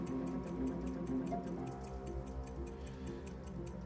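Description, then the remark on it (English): A countdown clock ticks steadily and quickly for a quiz contestant's final question, each sharp tick evenly spaced, layered over a low, tense sustained music bed with no one speaking. “Okay, start the clock.”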